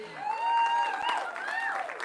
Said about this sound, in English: And by the way, can we just give it up and a big round of applause for our dream team?